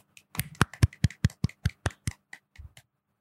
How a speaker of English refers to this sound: let's give a round of applause for Mr. Hemsworth. Golf claps.